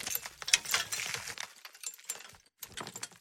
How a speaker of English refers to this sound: That sounds like a great idea. Let me take all these crystals off.